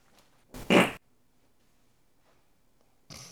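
A loud, close fart bursts out for about half a second with a rough, buzzy texture, followed by near silence until another short noisy burst cuts in at the very end.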